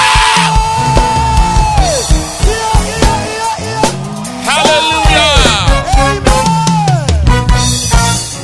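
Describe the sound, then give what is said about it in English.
A loud, continuous roar of many voices from a church audience shouting and whooping together for the Lord. The sound rises and falls in overlapping waves for several seconds, with individual cries standing out above the crowd. “Can we give the Lord a shout?”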